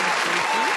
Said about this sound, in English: Let me give you a round of applause for being on the show. Let me give you a little.